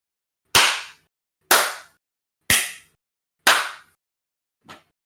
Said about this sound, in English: That was me clapping.